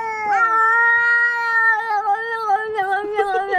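Two cats, not fighting but looking at each other, yowl in a long, wavering caterwaul, one sustained drawn-out cry that rises and bends, loud, with no talking.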